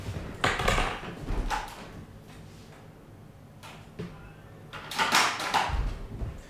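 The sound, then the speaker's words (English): A door is handled and opened for a visitor who has been buzzed in: several solid clunks and rattling knocks come in short bursts, with quiet pauses between them and no one talking. “Somebody's at the door.”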